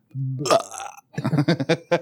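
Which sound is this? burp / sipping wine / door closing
burp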